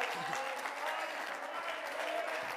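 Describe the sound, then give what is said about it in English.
Steady audience applause fills the space, a dense patter of many hands clapping at a moderate, even level throughout without pause. “I didn't get a big clap on that one.”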